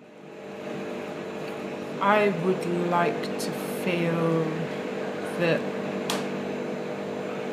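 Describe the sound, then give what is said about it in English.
A loud, steady refrigerator hum in Yorkshire drones throughout, its low tones unbroken and constant, while a person speaks briefly over it. “spoke in the presence of the loudest fridge in Yorkshire, possibly the world, the kind of hum which is entirely invisible when you're there, but loud as a jet engine on tape.”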